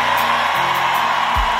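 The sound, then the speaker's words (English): A large crowd shouts together in one loud, sustained roar that fills the space, with a few higher whoops rising above the mass of voices. “What you shouting about?”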